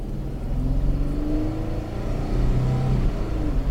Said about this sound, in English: Oh my gosh! I feel that power of that V6. All right, I didn't really get on it, but actually, for like an around town truck, totally, totally drivable.